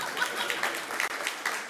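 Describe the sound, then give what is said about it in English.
A church audience breaks into applause during a sermon after the preacher fixes something, a dense, steady patter of many hands clapping at once, holding an even level throughout with no voices rising above it. “I was hoping for a round of applause there because I fixed it.”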